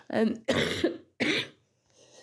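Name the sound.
coughing and throat clearing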